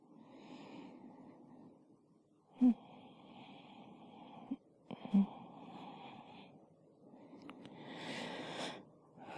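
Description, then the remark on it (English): Raspy snoring breaths repeat in slow cycles, some with a thin wheezy whistle, broken by a couple of sharp snorts. No talking, just steady sleepy breathing noise. “I almost wake myself up snoring.”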